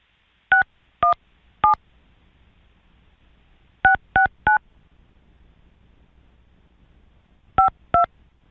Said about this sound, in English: Dial that number on that phone.